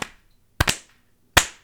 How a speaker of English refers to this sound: Wow, I had some weak claps there. I apologize. My first one was pretty weak.